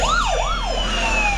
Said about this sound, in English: They might hear us over the sirens.